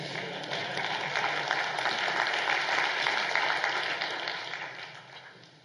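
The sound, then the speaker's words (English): A crowd breaks into sustained applause, a dense wash of many hands clapping at steady loudness that gradually fades out over the last second or two, with no voices standing out. “Give a round of applause for our Jesus holder today.”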